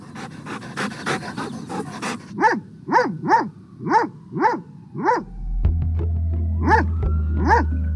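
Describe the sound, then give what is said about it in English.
A dog barks about eight times in a steady, loud series of sharp, tonal woofs, preceded by rapid breathy panting and joined near the end by a low steady hum. “Finally, you hear the most beautiful sound in the world.”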